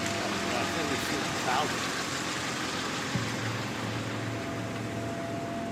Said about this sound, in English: Sounds like every Michigan car. Is that Tilda Swinton driving that car? I don't know, but it's so fucking loud. It's making me like anxious. Like, I hate cars and I want to start working on that thing right now.